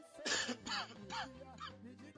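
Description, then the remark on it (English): A person coughs, four or so harsh, raspy bursts in quick succession, each fading with a rough, throaty tail over a faint steady background hum. “Let me cough some more.”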